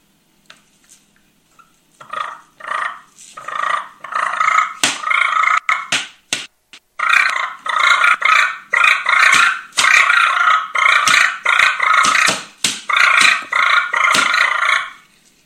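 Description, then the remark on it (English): Rough, rattling turkey fighting purrs made on a call to sound like two different turkeys purring back and forth, loud and continuous after a few choppy starts, with sharp clicks and overlapping raspy bursts suggesting two birds squabbling back and forth. “What you can do is you can purr, do fighting purrs, try to sound like two different turkeys. Purr back and forth and do that fight.”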